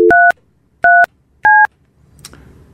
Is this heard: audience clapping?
no